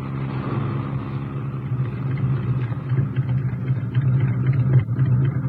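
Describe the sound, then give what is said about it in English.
A car engine rumbles steadily at low, idling speed for several seconds, with a slight rise in intensity toward the end as the car rolls forward slowly, driving up to big electronically controlled gates in a forest. “Yes, that's the real reason we took the car.”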